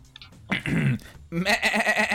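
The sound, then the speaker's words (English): A person imitates a goat with two wavering, nasal bleats in quick succession, the second longer and more trembling, loud, with no other talk. “Oh, wait, I didn't know how to do a goat's impression. What do they sound like?”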